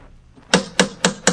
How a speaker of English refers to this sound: And so once again we raise the familiar brass door knocker of Dr. John Watson.